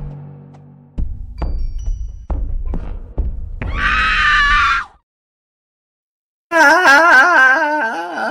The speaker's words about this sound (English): The scream. I've always got to pick up the scream just as it finishes.